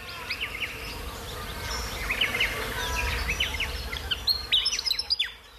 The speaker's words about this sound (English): The Willy Wagtail and Swift Parrot bird songs you've been hearing are from …, ….